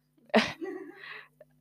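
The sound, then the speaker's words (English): A single sharp sneeze-like burst, faked by a person, trails off into a short drawn-out vocal sound, then a tiny click before silence. “It wasn't a real sneeze”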